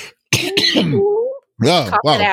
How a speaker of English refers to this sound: Cough it out. There you go.